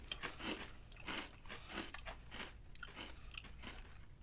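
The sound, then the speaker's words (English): Crisp crunching of a ridged, smoky ham-flavored potato chip being bitten and chewed, with repeated brittle cracks in an uneven rhythm and no talking. “Well, good crunch off the bat there.”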